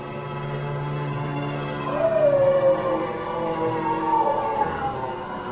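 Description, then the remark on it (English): A dog lets out long, wavering howls while attacking a man, one rising and falling cry followed by another, over a steady low hum of background noise. No one speaks. “He's gone for the dog.”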